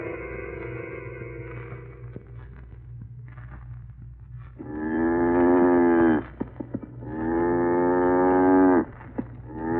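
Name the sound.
cow mooing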